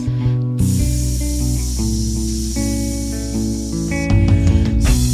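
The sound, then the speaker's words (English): A steady, airy hiss runs through a backdrop of sustained, humming musical tones, starting abruptly after a brief pause and swelling louder near the end. No one speaks. “Yeah, I think the hissing is good.”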